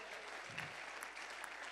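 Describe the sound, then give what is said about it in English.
An audience claps together in sustained, dense applause, a continuous wash of many hands without pause, given as a clap offering to God. “Give God a better clap offering.”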